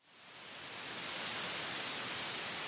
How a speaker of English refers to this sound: So a lot of people have heard of white noise before because there's been a lot more research on white noise and how it pertains to our ability to sleep, to relax, to focus. White noise, to me, sounds like a TV that should have been turned off.